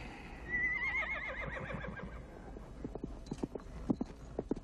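A horse whinnies with a long, wavering neigh, then hooves clip-clop in a quick, steady rhythm, sharp knocks continuing to the end.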